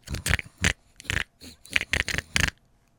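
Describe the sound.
A quick, irregular run of about eight short pig snorts and grunts, fairly loud, with brief gaps between them and no talking.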